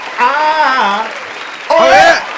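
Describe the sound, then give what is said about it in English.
Steady applause runs throughout, with loud whooping and cheering voices rising over it in two bursts, the second one brief and excited. “Hey, man, round of applause, man.”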